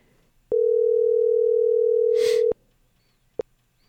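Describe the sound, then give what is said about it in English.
A loud, steady telephone dial tone hums for about two seconds while a phone call is being placed, then cuts off abruptly, followed by a brief faint beep a moment later. No one speaks. “Yeah, let's reach out to Chris, get him on the phone, and find out what happened in K-Town.”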